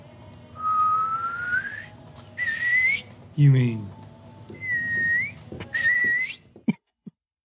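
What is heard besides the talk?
human whistling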